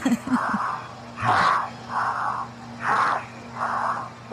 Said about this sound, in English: Listen to how labored his breathing is.